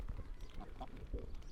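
Common eider ducks, a marine duck and the UK's largest duck, calling on a beach, three females and three males plus another arriving female: a cluster of low, soft, crooning notes, repeated in quick irregular succession, over a steady low rumble of surf or wind.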